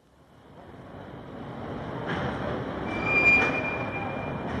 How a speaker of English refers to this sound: Oh, this is our train.